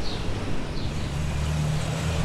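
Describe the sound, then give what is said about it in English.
A UPS delivery truck passes on a city street in Cambridge: a steady, heavy engine rumble, loud and continuous with low droning tones and a broad wash of traffic noise, no voices. A decibel meter reads 81. “Did you get the reading on that UPS truck? It was 81 with the UPS truck.”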